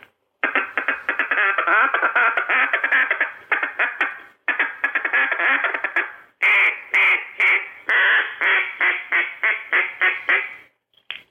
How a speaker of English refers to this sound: It's more of a distorted hit and miss, tick-tick-tick-tick-tick-tick-tick-tick-tick-tick-tick-tick-tick, than a rolling call. But yes, that's what ducks sound like on the water. When they're content, they're feeding, and they're happy